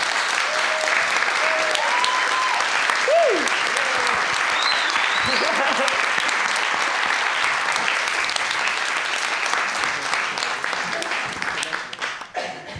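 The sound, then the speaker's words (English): At a storytelling event, an audience claps for the first storyteller in a dense, steady round of applause lasting about twelve seconds, with a few rising whoops and whistles early on, before the clapping thins and fades out. “It's always very hard being the first storyteller, so a big round of applause, please,”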